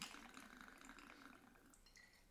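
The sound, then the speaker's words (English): Crème de violette liqueur, a 4-ounce double pour, pours steadily into a glass: a continuous trickling, splashing stream that holds at an even level for about two seconds, with small drippy splashes toward the end and no talking. “So we're going to do 4 ounces of creme de violet.”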